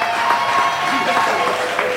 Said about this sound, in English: clap your hands